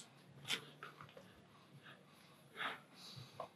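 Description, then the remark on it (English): Several short, breathy sniffs, two of them sharper and stronger, spaced irregularly over a few seconds as someone smells dry coffee grounds during a blind coffee tasting. “Let me get some of those dry sniffs.”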